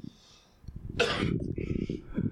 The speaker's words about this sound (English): I apologize for yawning into the microphone.